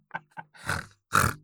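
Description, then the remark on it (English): A pig in a studio grunts twice in quick short bursts, then lets out two longer, rougher snorting oinks, loud with no voices around it. “Oh, guys, I thought I told them last week to get that pig out of the studio.”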